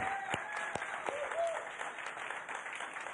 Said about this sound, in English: And so I just want to give honor to where honor is due. So let's give them a hand clap.